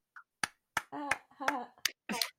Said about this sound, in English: Clapping for myself.